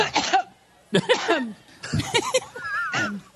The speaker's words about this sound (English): Oh, here's Hillary coughing up a storm this weekend.